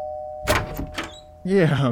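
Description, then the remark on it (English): A doorbell at a yellow house rings with a steady electronic tone, punctuated by a few sharp clattering bursts, before a loud voice cuts in near the end. “Just have to ring the doorbell and...”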